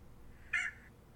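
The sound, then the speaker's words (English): A single short rooster crow sound effect played from a soundboard, a bright harmonic squawk lasting only a fraction of a second and fading quickly, rising out of a low, steady background hum with no talking. “I roostered again.”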